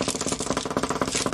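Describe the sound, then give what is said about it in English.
A fast, steady drum roll of rapid rattling hits, sustained at an even loudness for just over a second, with no voices. “Drum roll.”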